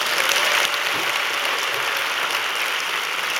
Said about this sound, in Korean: 그럴 때 박수 한번 주시는 거예요.